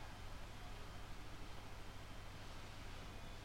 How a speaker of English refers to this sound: I got a gentle hum of the fan.